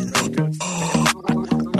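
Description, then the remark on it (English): A person imitates a goat with throaty, gargling bleats, several wavering bursts in quick succession, loud with no other talking. “That's throat goat.”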